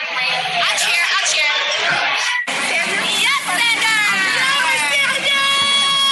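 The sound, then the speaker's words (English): A party crowd erupts in loud, sustained cheering as the winner of a challenge is revealed, with high-pitched screams and whoops layered over a dense roar of voices; a brief cut midway, then the shouting swells again. “Can I give y'all actual audio of it happening?”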